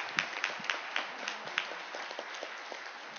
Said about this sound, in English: And you get a big round of applause from the people in this room.